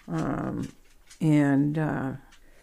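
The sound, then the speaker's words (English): A dog approaches, growling and whimpering in two drawn-out, moaning bursts, the second louder and longer, with a short quiet gap between them. “Here comes the dog. Here he comes.”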